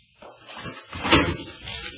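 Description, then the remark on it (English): A desk drawer slides open, a dry wooden scrape with a few soft knocks, swelling to a louder rattle midway before trailing off. No voices. “All the confidential records are in the top left drawer of Mr.”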